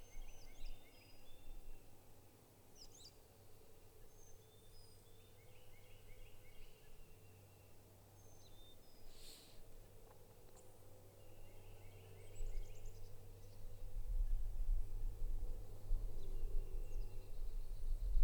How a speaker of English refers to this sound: I'm reminded just listening to the birds and everything coming alive around me